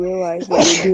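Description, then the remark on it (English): A single sharp, loud sneeze bursts out partway through, with a person talking just before it and the voice carrying on right after. “Excuse me. Bless you.”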